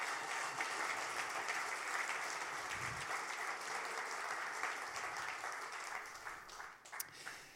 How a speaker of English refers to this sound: So where's our lovely worship team? Where are those guys? There they go. Give them another round of applause.